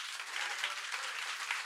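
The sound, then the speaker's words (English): A round of applause: many hands clapping in a dense, steady patter that holds at an even, moderate loudness throughout, with no voices standing out. “That deserves a round of applause, ladies and gentlemen.”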